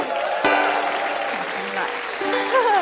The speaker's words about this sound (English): Thanks for your applause.